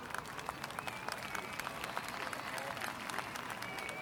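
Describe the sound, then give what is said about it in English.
An audience at a summer fair fete in a park applauds the judge of the vegetable competitions steadily, a dense patter of many overlapping claps sustained at a moderate level throughout, with some faint chatter mixed in. “Please give a round of applause for all of his hard work as a judge today.”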